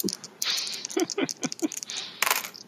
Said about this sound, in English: Yeah, that's snake eyes, guys. So that's what, a five.